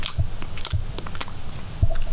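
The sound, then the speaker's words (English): Crunching of Brighton Rock, a very hard traditional sweet, being chewed, with several sharp, crackly bites and grinding at an uneven pace. No one speaks. “Crunchy means when you have to eat something a lot because it's difficult to eat, and you might make this sound.”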